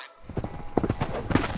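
A brown and white miniature horse, about 32 inches tall and 225 pounds, clip-clops its hooves on a hard surface in a quick, uneven series of steps, moderately loud, with no voices.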